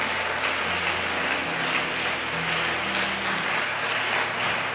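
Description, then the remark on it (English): A church audience at First Pentecostal Church claps steadily for several seconds for its guests at a Mother's Day service, a dense, even wash of many hands applauding at a constant loudness, with a faint low hum underneath and no voices. “Why don't all the home folks give our guests a good hand clap?”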